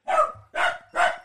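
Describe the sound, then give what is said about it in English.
Dogs barking: three sharp, fairly loud barks in quick, evenly spaced succession, each one full and slightly rough, with no one talking over them. “Sorry, the dogs is barking in the background, but I got to get this done.”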